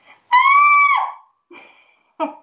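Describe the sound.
A voice imitates a daughter's high, piercing shriek, one sustained scream lasting under a second, followed by a couple of shorter, quieter squealing bursts, loud.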